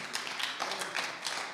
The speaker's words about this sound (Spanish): Y no nada más yo, usted también. Dese un aplauso.